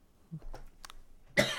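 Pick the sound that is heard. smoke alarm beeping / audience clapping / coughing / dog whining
coughing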